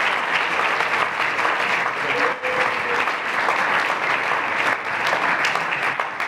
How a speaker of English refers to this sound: Would you clap your hands and stand in honor of the man of God